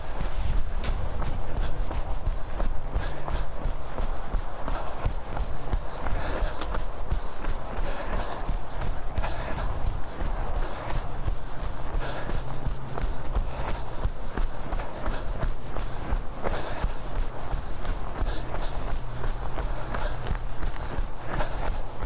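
Steady running footsteps on a dirt field path while finishing a lap of Brownmoor and heading back to the car, a quick regular rhythm of soft thuds that continues for the whole stretch, with breathing and a low steady rumble underneath.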